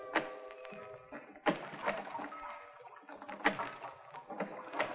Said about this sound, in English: Somebody was pulling out from shore in a rowboat.